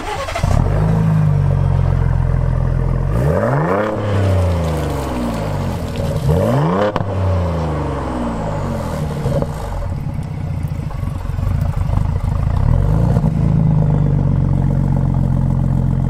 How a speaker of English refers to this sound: exhaust system with valves that are very similar to the one available on the F-150 Raptor truck. And you're probably wondering how it sounds. Well, I actually have a clip of the engine sound, and you can listen and or watch it right here, right now.